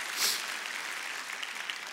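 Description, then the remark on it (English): An audience gives a hand clap for the Lord: dense, steady hand clapping that forms a continuous, bright patter of many hands, holding at a fairly even level with a slight swell at the start. “Can we give the Lord a hand clap, and we just welcome all of you with us.”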